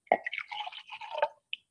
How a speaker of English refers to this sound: Yes, I do have some tea, which I might try pouring right now, just lovely to keep it good going.